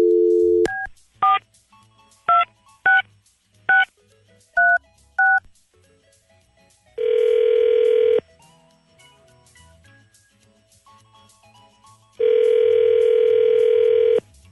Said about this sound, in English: All right, here we go. Okay. Dialing at random.